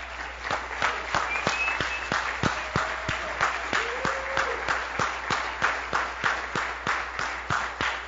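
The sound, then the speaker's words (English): A crowd of people claps steadily and loudly as a clap offering to the Lord, a dense wash of hand claps with regular rhythmic accents, while a few faint voices and whistles rise briefly over the applause. “Come on, let's give the Lord a hand up, clap offering.”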